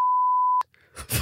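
A single loud censor bleep, a steady pure tone held for about half a second and cut off abruptly, followed by a few soft breathy, noisy bursts.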